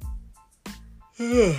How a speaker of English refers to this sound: Sorry, I just yawned.